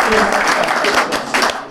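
A round of applause from a group at a golf prize-giving, many hands clapping in a dense, steady patter that stays loud and even throughout the short stretch.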